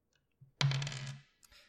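A sharp clatter of two ten-sided dice, rolled together as a D100, tumbling onto a tabletop, ringing and rattling for about half a second before settling, followed by a faint final tap. Fairly loud, no voices.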